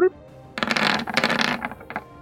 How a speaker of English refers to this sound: Thought it was going to be a 4 on the dice. It moved to the 18 at the last second.